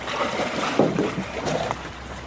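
Water sloshes and splashes up close as a seaplane is hauled through the shallows toward a rocky shore, with a steady wash of wind and water and no talking.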